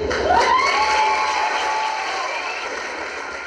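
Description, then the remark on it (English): A crowd cheers in a wedding reception hall after a toast to the newlyweds: a steady, dense roar of many voices with a few rising whoops near the start, fading slightly toward the end. “The sound of cheers will fill the reception hall, and somewhere in the room, an angel will raise a glass.”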